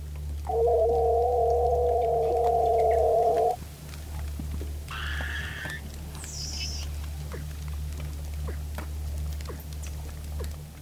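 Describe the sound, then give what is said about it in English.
Haunting siren-like songs beneath Antarctic ice: a steady droning tone for about three seconds, then two shorter, higher whistling calls, each pitched above the last, over a constant low underwater hum. “And I was really, really fascinated of these haunting siren songs of the Antarctic under the ice.”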